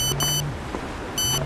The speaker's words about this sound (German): Er hat schon halb den Weg von der Suarezstraße zum Kudamm geschafft, als sein Handy eine neue SMS meldet.